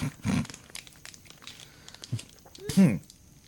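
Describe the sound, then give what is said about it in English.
A plastic wrapper being cut open with scissors, with crinkly bursts of rustling and tearing at the start and again near the end, where a brief voice sound overlaps. “You need better scissors, homie. Scissors are wow.”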